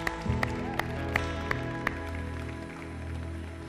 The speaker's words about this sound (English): Let's give the Lord another clap, yeah?